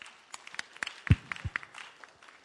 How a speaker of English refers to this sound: Let's clap for her.